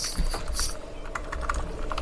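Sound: computer keyboard typing clicks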